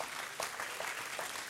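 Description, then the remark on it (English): A church audience claps together for God during a morning service, a steady wash of many overlapping hand claps at an even, moderate loudness, with a few sharper individual claps standing out from the dense, crackling sound. “Give God a hand clap this morning.”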